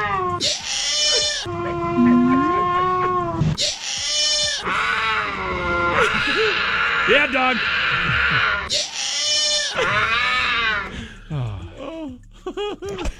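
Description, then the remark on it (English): Loud, strained cougar mating yowls and screeches mixed with a man's shouted yelling, the calls rising and wavering in bursts, with brief spoken words near the end. “These are going to be animal mating noises mixed in with … yelling in his Steelers version of ….”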